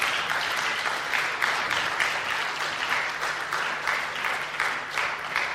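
An audience applauds steadily for several seconds after a prayer, a dense, even wash of many hands clapping at once with gentle swells in loudness and no voices breaking through.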